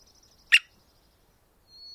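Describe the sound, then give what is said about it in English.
An American three-toed woodpecker in a quiet setting gives one sharp drumming knock, then after a pause a thin, high-pitched squeaky call that holds for a moment. A faint high tone lingers at the start. “recorded the drums and squeaks of this American three-toed woodpecker”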